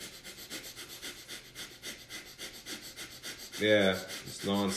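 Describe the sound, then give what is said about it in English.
Rapid, rhythmic fire dragon breathing from Kundalini yoga, a man inhaling and exhaling rapidly and nonstop, with quick, forceful inhales and exhales in a steady pulse for several seconds. A short burst of voice follows at the end. “And if you couldn't hear that, basically he's inhaling and exhaling rapidly.”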